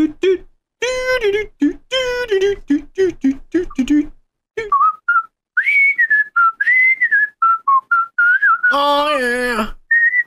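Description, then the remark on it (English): Someone whistles a short, wandering melody, a TV theme tune, after a voice sings a quick, rhythmic run of notes. A loud, strained vocal burst cuts in near the end. “I always wanted to learn how to whistle that song.”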